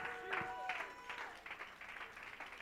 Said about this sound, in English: Somebody ought to stand and clap your hands and give God a shout of praise.